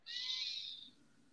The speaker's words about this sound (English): Sorry, guys. My cat is here. Hear that. Making her presence known. Always. When is she not?